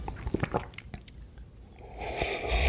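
Someone takes a sip of Maynard James Keenan wine: a few small wet mouth clicks, then a soft airy slurp that swells toward the end. No one speaks.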